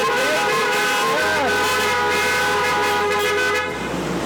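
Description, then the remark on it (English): Several car horns honk together in a parking lot during an outdoor drive-in church service, a sustained, overlapping blare lasting a few seconds, loud, with a steady low engine rumble underneath. “Can we give a few honks and a high beam?”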